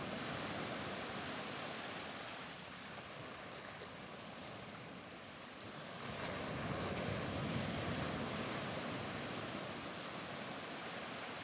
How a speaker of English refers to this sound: Regarding the rhythm of the ocean, I recall reading some time ago already on Maurice's Tuning of the World about the shore breakers producing an average cycle of 8 seconds.